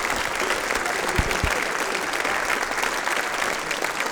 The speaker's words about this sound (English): Ladies and gentlemen, give a massive round of applause.